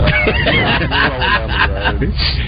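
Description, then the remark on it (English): Loud, steady noise of a bus the caller is riding comes through a muffled, tinny phone line, a constant rumbling clatter with indistinct voices and honking-like bursts mixed in. “Can you mute the bus?”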